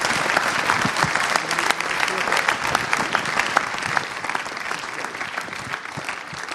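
Sustained applause from a room full of people, a dense, steady clatter of many hands clapping at once that holds for several seconds before easing slightly toward the end.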